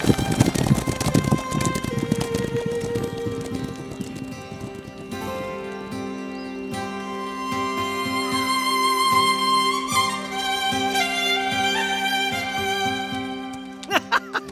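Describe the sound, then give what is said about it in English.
A horse gallops, its hooves clip-clopping in a rapid, loud rhythm for the first few seconds before fading under swelling, sustained music. “Bring her horse! Ride!”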